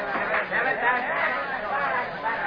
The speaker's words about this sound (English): It's a little later at the third base field boxes of the jammed ballpark. A typical New York Sunday crowd is watching fielding practice.